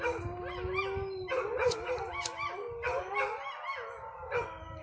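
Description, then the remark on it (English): Several pet dogs out in the country howl together while sirens are going off, in long, overlapping wavering tones, joined by a few sharper yips and whimpers, sustained fairly loudly across the whole stretch with no talking. “My dogs, you hear them howling.”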